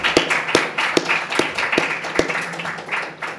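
An audience applauds in a steady, dense wash of many clapping hands, with a few louder, sharper claps close by standing out at irregular intervals.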